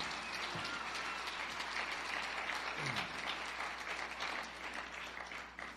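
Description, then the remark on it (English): A crowd applauds with dense, steady hand clapping that stays loud and continuous throughout, thinning slightly at the very end. “Give her a big hand clap.”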